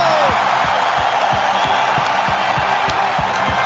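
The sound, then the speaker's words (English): A large arena crowd in the Carolinas, on its feet, roars and cheers continuously for Flair's walk to the ring, a dense, loud wall of voices, with rhythmic thumping, like stomping or clapping, pulsing underneath about every third of a second. “Because once Flair comes out, his walk to the ring and him getting into the ring, it's literally the crowd on their feet cheering for 3 minutes nonstop.”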